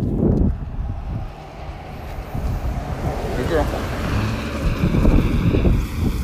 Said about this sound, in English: It's more likely to be a truck than it is a car. Because that's a country car right there. F-150.